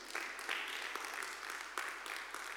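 A crowd claps together in a dense, steady patter of overlapping hand claps, sustained evenly with a few sharper bursts, moderately quiet and with no voices rising above it.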